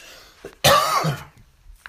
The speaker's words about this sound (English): Pardon me for that. I'm having a coughing fit out of nowhere.